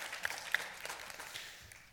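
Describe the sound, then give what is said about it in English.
An audience applauds in a dense, crackling wash of clapping with a few sharper individual claps early on, then the applause gradually thins and fades over two seconds. No one speaks. “You can clap, that's fine.”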